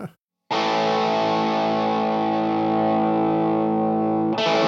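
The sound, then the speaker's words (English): A heavily distorted electric guitar chord, played through a new distortion pedal from Bardic Audio Devices, rings out loud and sustained after a brief silence, fuzzy and thick, then is struck again near the end. “Where can people get this new pedal”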